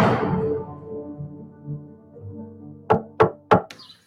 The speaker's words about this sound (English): Why the hell are you knocking on my door?